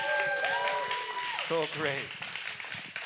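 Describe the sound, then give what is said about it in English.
A crowd at Rooftop Church applauds steadily, a dense wash of clapping that carries on throughout, with voices calling out and cheering over it. “Rooftop Church, can we give them a round of applause again?”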